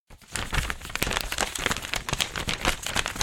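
Paper crinkles and rustles in a dense, continuous stream of small crackling bursts as a 7-year-old boy quickly folds and creases a sheet into a paper airplane, with no voices.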